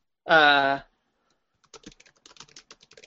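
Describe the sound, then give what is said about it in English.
A short voiced hum is followed by a brisk run of keyboard typing, many quick uneven clicks at moderate volume. “As I'm typing, I'm just gonna say some stuff.”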